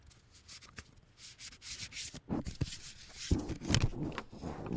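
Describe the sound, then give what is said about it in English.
Close, crisp papery rubbing and riffling of a deck of cards being shuffled near the mic for ASMR, in repeated scratchy bursts that grow a little louder and busier toward the end, with no talking. “I am shuffling now.”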